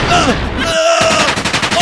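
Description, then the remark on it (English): A loud, rapid barrage of electronic laser gun blasts, with high, wavering tonal zaps over harsh noisy bursts, and a quick stuttering run of shots at the end. “I have a laser gun!”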